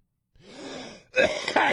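A raspy cough in two bursts: a breathy, hoarse first push, then a sharper and louder second one, with no talking around it.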